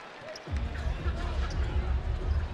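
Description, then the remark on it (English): A basketball bounces repeatedly on the baseline of a gym floor during a BYU basketball game, the thuds rising out of a busy arena background of crowd noise and muffled voices after a quiet first half second. “The handoff to triple and a bouncing ball on the baseline.”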